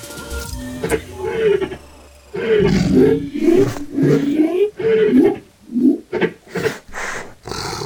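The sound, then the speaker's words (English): Big cats roar in a loud, rough series of calls, starting as drawn-out snarling roars and breaking into shorter, rhythmic grunting bursts toward the end, all low and throaty. “The cats are turning towards us.”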